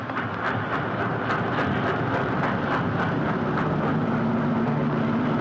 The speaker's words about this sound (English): Headlights coming in the alley. Whirring. No. No, they're going on through.